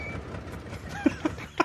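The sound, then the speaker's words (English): An AMC Gremlin, the Mirthmobile, purrs with a steady, low, rough engine rumble, broken near the end by three short, sharp, slightly tonal bursts. “Listen to that purr.”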